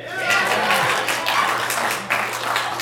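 A steady wash of audience applause, many hands clapping at once in a dense, continuous patter that holds at an even loudness for the few seconds with a slight dip near the end.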